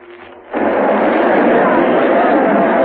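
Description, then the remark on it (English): An enormous crowd in a city square: after a brief quieter moment, a dense, steady roar of many voices swells in abruptly and holds loud and even to the end. “There's a kind of terrace over the crowd here. It is precisely 4 minutes to 12. The crowd is enormous.”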